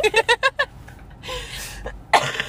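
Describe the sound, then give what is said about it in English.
A quick run of about five sharp coughs in a row, followed by a softer breathy stretch and one more burst near the end. “With the coughing again.”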